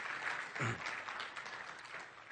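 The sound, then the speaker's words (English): A church audience applauds together for the youth group leaders and young adult ministry, a dense, steady patter of many hands clapping at moderate volume throughout, with a brief low murmur of voices partway through. “Yes, you can clap for that. That's worth clapping for.”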